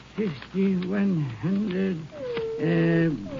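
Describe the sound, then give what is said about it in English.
A dog named Rags growls nervously in a series of low, wavering growls that rise and fall in pitch, fairly loud, with brief pauses between them and no talking, at night in Irwin County, Texas, while its owner counts a large sum of money. “As he was counting, his dog Rags appeared to be nervous.”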